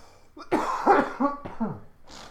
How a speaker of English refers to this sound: I gotta cough again.